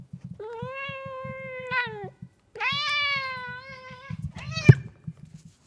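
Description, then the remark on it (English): A cat yowls while being petted: two long, drawn-out wails followed by a brief sharp cry, with a low rhythmic rumbling running underneath throughout. “So I tried to pet the cat today while recording, and would you like to hear what happened?”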